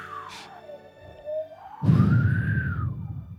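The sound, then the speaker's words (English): A man blows into a microphone to imitate wind. A thin, wavering whistle rises and falls, and about halfway through a loud, rough, rumbling gust of breath takes over until the end, with no talking. “He's literally blowing into the microphone.”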